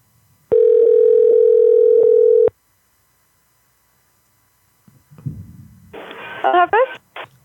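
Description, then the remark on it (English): A loud, steady telephone dial tone hums for about two seconds, then cuts off; after a pause, faint muffled voices and line noise come through. “Thank you guys on TikTok for being patient with the phone connection”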